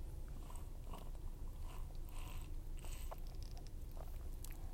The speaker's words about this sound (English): I'm sorry, I'm just going to get a quick sip of water.